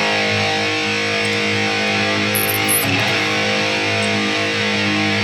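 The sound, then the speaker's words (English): A single distorted electric guitar chord rings out and sustains steadily for about five seconds, thick and buzzy, with no talking over it. “Let me hit that chord, if I can hit the chord properly.”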